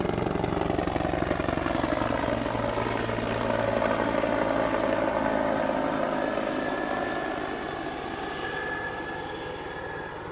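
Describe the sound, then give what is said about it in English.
A helicopter flying low and doing circles directly overhead at the edge of Lake Ontario drones steadily, a loud continuous engine roar with a rhythmic rotor chop and shifting tones as it circles, fading slightly toward the end. No voices. “Anyway, it's doing circles just directly overhead, right over Lake Ontario. But, of course, we're right on the edge of it.”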